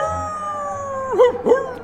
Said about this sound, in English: And I heard it with my own ears. The cry of the ravenous dire wolves.